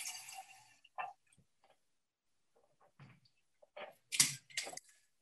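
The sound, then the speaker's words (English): Water splashes into a glass jar holding three spoonfuls of adzuki seeds, filling it to soak them for sprouting, in short, bright bursts, with a quiet pause in the middle before a louder stretch of pouring near the end. Fairly soft, with no talking. “And then filling it with some water.”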